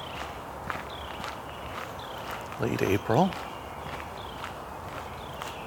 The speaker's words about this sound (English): We've got a lot of robins, a few red-winged blackbirds, and Carolina wren, and a woodpecker of some sort. And chipping sparrow I'm hearing fairly far off.